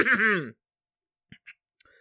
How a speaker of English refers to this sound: excuse me, I have to clear my throat.